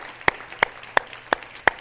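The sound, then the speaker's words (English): An audience claps hands together to the Lord in a steady unison rhythm: five sharp, crisp claps evenly spaced about a third of a second apart, with no voices between them. “Let's clap our hands to the Lord tonight.”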